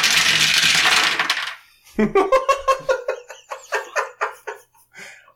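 A handful of dice is rattled briefly, then spilled onto a hard surface, clattering in a quick run of sharp, bright clicks that slow and thin out as they settle.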